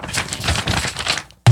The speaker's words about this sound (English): I forgot my notebook at home, so I have loose leaf paper. You literally do. I do. I have a stack of it ready to be shuffled.